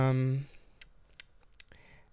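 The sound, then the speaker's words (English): A voice briefly sounds, then a Trader Joe's grocery bag crinkles in three or four short, sharp crackles spaced irregularly, quiet, with near silence between them. “I think, like, okay, this Trader Joe's bag is, like, bothering me because it's, like, in crumpling.”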